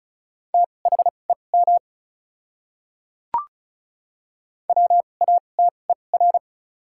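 Rapid Morse code at 35 words per minute with double character spacing, sending common words, in a steady mid-pitched tone: two quick bursts of short and long beeps separated by a pause, with a brief click in the silence between them.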